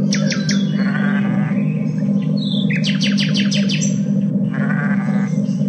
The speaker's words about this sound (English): How could you forget the nightingale?